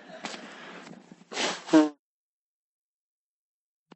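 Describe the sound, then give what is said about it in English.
A loud nose blow: a rough breathy rush that builds into a brief honking snort, then stops, leaving silence apart from a tiny click near the end. “I'm going to need to blow my nose, and it may be very loud.”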